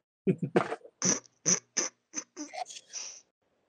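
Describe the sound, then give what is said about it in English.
A zipper being pulled in a quick run of about ten short, raspy, hissing bursts over roughly three seconds, fairly loud, with no talking over it, then quiet. “There was a zipper noise.”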